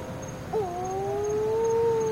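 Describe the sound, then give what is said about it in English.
A wedge-tailed shearwater gives one long, moaning wail that starts abruptly, then holds and slowly rises in pitch over a steady low rumble, with no talking. Recorded at roadside burrows on Kauai around 8 o'clock at night. “What I can see are three wedge-tailed shearwaters trying to resuscitate birds that have been knocked down by cars.”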